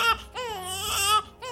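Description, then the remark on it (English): A newborn baby that has just taken its first breath cries in a continuous, wavering wail, loud, with a brief catch of breath before the sobbing cry resumes. “And as the roar fades, it is replaced by the crying of a young infant that has just taken its first breath.”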